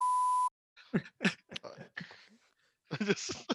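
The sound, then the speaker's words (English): A single steady censor bleep tone, loud and flat, lasts about half a second at the start, then voices follow with short bursts of speech-like sounds and breaths. “It'll get beeped out.”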